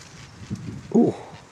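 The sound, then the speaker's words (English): A bird gives one short, fairly loud call, a brief rough burst over a quiet outdoor background with a faint earlier chirp-like sound. No one speaks. “Ooh, can anyone identify that bird?”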